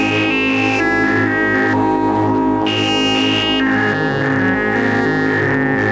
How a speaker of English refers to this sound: So I can, so I've now got that frozen reverb. So if I turn the synth down, that's just that into the reverb frozen.